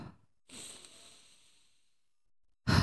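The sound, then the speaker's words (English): A deep, deliberate calming breath: a short intake through the nose followed by a long, airy exhale through the mouth that slowly fades, with another breathy burst at the very end. Nobody speaks. “I'm like in through the nose and then out through the mouth.”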